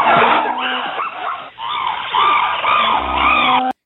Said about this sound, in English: Oh, I have chimps. Let me hear what this sounds like.